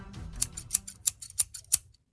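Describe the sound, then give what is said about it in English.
A steady series of crisp metallic scissor snips, about three per second, fairly quiet over a faint low rumble, ending with one final louder snip after a short pause. “Are they scissors? They're scissors.”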